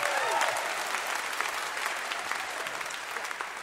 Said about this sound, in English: I'll let you get your own applause.